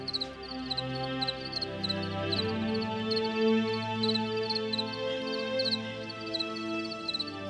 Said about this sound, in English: If I wake up in the middle of the night, I can like tune into what's happening with the crickets.